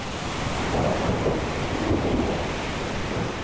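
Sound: thunderstorm with rain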